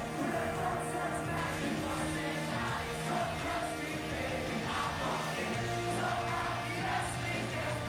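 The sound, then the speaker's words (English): A large crowd sings along with live music, a dense wash of many voices blended with sustained instrumental tones, steady and fairly loud throughout with occasional shouts rising above. “You hear everyone singing it along.”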